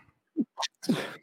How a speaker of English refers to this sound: Bless you again. I will not sneeze all day until I get on this show and then immediately start sneezing on this show.